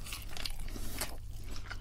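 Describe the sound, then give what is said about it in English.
Crunchy chewing of fried chicken nuggets, a string of crisp, crackling bites at a moderate level over a steady low hum, with no talking. “I've eaten nearly all the chicken nuggets.”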